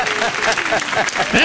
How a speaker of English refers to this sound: We're all clapping and laughing